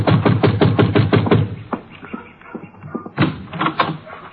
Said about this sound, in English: Yeah, you better knock again.